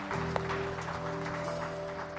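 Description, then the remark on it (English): An audience claps together in a steady, dense wash of applause, with sustained musical tones holding underneath throughout, giving a clap to the Lord after a prayer. “Let's give a clap unto the Lord for what the Lord is to us.”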